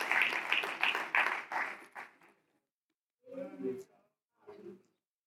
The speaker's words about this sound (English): Somebody clap your hands unto the Lord today. Hallelujah.